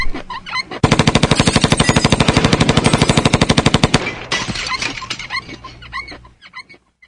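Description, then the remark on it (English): A long, rapid burst of machine-gun fire from a drive-by shooting hammers out a steady stream of loud, sharp shots for about three seconds, followed by scattered clatter, shouts and a dog's yelps as the noise fades. “It says, if you don't pay up, there will be a drive-by shooting.”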